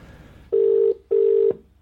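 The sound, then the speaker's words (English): A telephone rings in the classic double pattern: two loud, steady electronic buzzing tones about half a second each, separated by a short gap, with no one talking. “There we go. It's ringing. Where's the ringing noise?”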